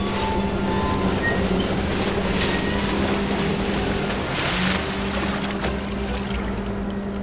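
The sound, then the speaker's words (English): A crane's heavy motor drones steadily and loudly, with a low mechanical hum throughout and a brief surge of rushing, splashing noise midway as it lifts a beam, sunk to a depth of 4 meters, out of the water. “Let's take it out of the water.”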